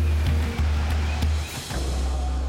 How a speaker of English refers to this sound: As the ship rocks in 30-foot waves